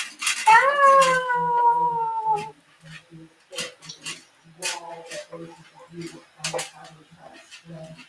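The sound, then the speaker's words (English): A cat lets out a long, loud, drawn-out meow, then a shorter, fainter meow a few seconds later, with a soft low pulsing hum underneath. “I thought I heard a meow.”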